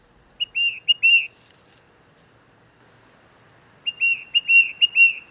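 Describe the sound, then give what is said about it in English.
A tufted titmouse, a small gray songbird, calls in two bursts of quick, clear whistled notes, four then five in a rapid run, with a couple of faint high chirps in the pause between. “It turns out that the tufted titmouse, a small gray songbird, is often the one leading the flock.”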